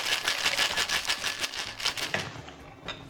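A cocktail shaker holding ice and an egg cocktail rattles rapidly, shaken only briefly so as not to break down the egg, ice clacking in a fast, steady rhythm of bright, crisp hits that eases off toward the end. No one speaks.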